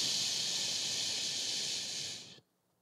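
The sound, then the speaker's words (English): A single long, steady shushing "shhh" from a voice, a loud breathy hiss that holds for over two seconds and then cuts off abruptly into near silence. “Jesus looked at it and said, shh.”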